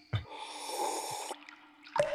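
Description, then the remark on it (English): A long, airy slurp of whiskey drawn in through the lips to aerate it, a wet hiss lasting about a second, ending abruptly, followed by a shorter sucking breath. “Haven't you heard of aerating your whiskey when you drink it? Through a nice slurp?”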